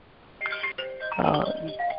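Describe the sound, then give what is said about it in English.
A phone ringtone chimes in a quick melodic burst of bright electronic tones, moderately loud, with a fuller jumble of notes midway before a final held tone. “Pardon that ringing there.”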